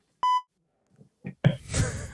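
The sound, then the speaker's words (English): A single short, loud electronic beep with a bright, buzzy tone, followed after a pause by a few faint knocks and then a burst of rustling, clattering noise. “You missed the beep there, by the way.”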